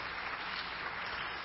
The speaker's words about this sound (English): Yeah, we can applaud.